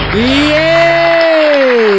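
Loud crowd cheering and applause lasting about two seconds as the host of It's Radio with TV's Tim Stack is introduced, with one sustained rising-and-falling whoop riding over a dense wash of clapping and shouting.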